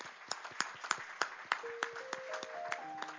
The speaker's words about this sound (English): Can we give him a warm hand clap of welcome at this time?